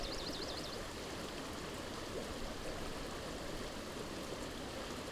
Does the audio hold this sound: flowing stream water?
yes